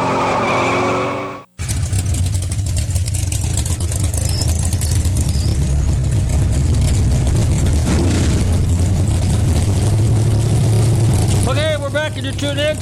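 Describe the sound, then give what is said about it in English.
Drag racing car engines roar loudly at a drag strip for over ten seconds, a dense, sustained blast with tire squeal rising near the end, following a brief moment of a voice at the start. “That's what it sounds like when you're at the drag strip.”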